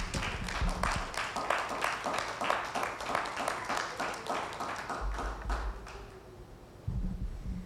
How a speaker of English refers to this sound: Amen. Give him a hand clap.